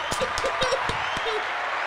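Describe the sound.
Several sharp hand claps ring out in a loose, uneven rhythm, close and fairly loud, with faint voice sounds murmuring underneath.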